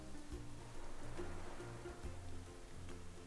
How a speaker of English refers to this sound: When you close your eyes, your senses become more tuned in to the sound of the water lapping on the shore.